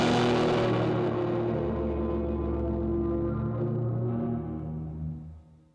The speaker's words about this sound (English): we are here to show you our latest, greatest pedal, the Rooms. It's a stereo reverberation pedal with six different modes of operation. The first one we're going to see is the Rooms, a dope reverb.